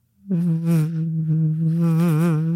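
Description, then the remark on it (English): A voice imitates a fly with one steady, low-pitched buzz that starts abruptly and drones on for over two seconds, wavering slightly in pitch, with no other sounds around it. “He would get up in your face.”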